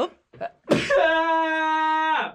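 Two quick, sharp intakes of breath build into a loud sneeze, which stretches into a long, drawn-out vocal tail before cutting off. No talking.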